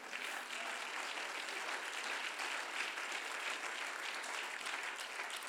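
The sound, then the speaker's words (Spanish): A church audience claps steadily for several seconds as an applause to the Lord, dense continuous applause from many hands, with no voices standing out. “Un aplauso al Señor, hermanos.”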